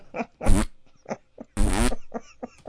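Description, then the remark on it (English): A loud fart released by a man leaning to one side during a police interview: two long, buzzy, rasping blasts broken up by several shorter sputtering pops, with the tone wobbling in pitch. No one talks over it. “But while the detective was interviewing the guy leaned to one side and released a loud...”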